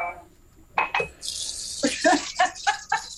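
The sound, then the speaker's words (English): Water is splashed onto a man's face: a hissing splash lasting about two seconds, with short gasping vocal bursts breaking through it as he reacts. “I'll splash something off your face and all.”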